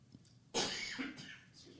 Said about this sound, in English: If you're going to cough, can you leave the room, please?